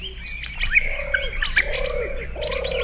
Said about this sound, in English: an album…, on which all the singers are birds